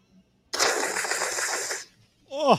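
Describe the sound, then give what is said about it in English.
A man makes a long, wet slurping hiss drawn through the lips, improvised at the end of a film line, lasting over a second, followed after a brief pause by a short voiced sound that swoops in pitch. No words are spoken. “You know that little bit at the end where he goes, you know, that little slurping sound he makes?”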